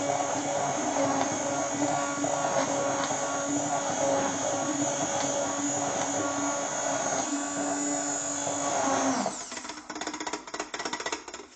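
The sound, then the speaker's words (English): A blender runs with a loud, steady whirring drone and a buzzy motor hum for about nine seconds, then the tone cuts off into softer, uneven rattling. “I really don't recommend using a regular blender.”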